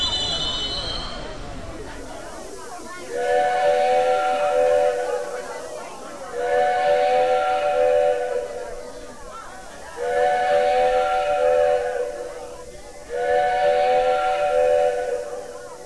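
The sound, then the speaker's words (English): Four long train whistle blasts, signaling a train in distress, sound in a steady rhythm, each lasting about two seconds with short gaps between, loud and harmonically rich over a low rumbling background. “Four long train whistle blasts means it's a train in distress.”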